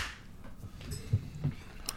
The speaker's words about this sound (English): I think that email deserves a clap. We're giving Snares the clap? Well, all right. 1, 2, 3.